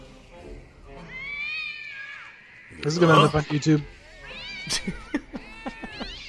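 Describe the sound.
An upset cat lets out drawn-out, wavering yowls and a loud burst of hissing growls, harsh, after goop is dumped on it, while a person talks briefly over part of it.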